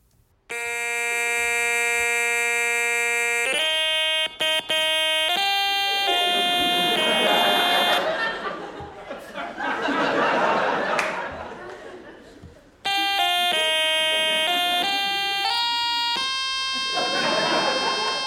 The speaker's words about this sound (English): he plays Auld Lang Syne on something. You never really get a good look at the surface of it. It appears to be some sort of older electronic device that he uses a stylus with to produce fixed tones that change as he slides the stylus.